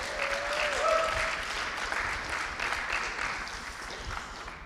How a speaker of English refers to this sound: Let's just give God a hand clap this morning.